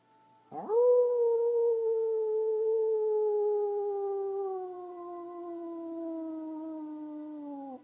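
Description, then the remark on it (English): A person lets out a long, sustained wolf-like howl after an inhale in a guided exercise, rising sharply at the start then holding a steady, slowly falling tone for several seconds, fairly loud, with no other voices. “And a howl.”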